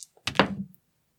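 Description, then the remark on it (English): Dice clatter onto a hard surface in one quick burst, landing on a 7: a firm thunk and a brief rattling tumble lasting about half a second, then silence, with no voices. “And I'm going to roll it, and then I'm going to tell you what I'm about to do.”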